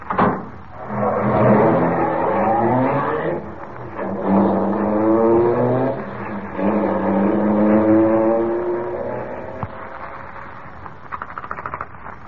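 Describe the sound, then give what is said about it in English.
A car engine revs up and pulls away, its pitch climbing through several gear changes as it accelerates steadily, loud, with no voices. “Sure, hop in.”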